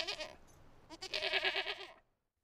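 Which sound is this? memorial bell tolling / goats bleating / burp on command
goats bleating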